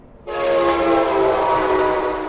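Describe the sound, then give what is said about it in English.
A loud train horn blares suddenly and holds steady with strong harmonic tones, the train rumbling underneath it for the full couple of seconds, just a few feet from the door of a home beside the train line. “here's what it sounds like just a few feet from Nancy and Justin's door”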